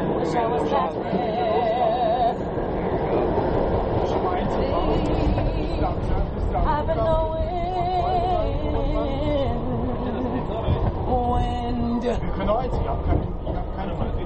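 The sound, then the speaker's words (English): A steady, loud rumble of a moving train carriage fills the whole stretch, with a crowd of passengers chattering and talking over one another. “I can't even hear her. Right, so you know nobody on that train heard her.”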